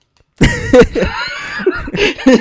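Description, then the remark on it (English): A person coughs repeatedly, a run of loud, raspy bursts in quick, uneven succession with no talking in between. “You've been coughing this whole time, and now you're taking a sip of water?”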